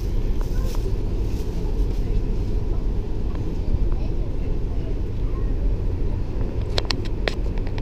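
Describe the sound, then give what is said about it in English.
A small two-car train rumbles steadily from inside the carriage, a constant low, loud drone, with a few brief sharp clicks and rattles near the end. “Yeah, I'm enjoying our massive 2-car train. So this is not your average Tokyo train.”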